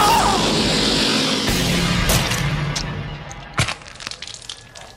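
A loud, gory smash from a gunshot smashing apart a slave driver's head, with sharp cracking impacts over a dense noisy burst that gradually fades into scattered crunching, clattering debris.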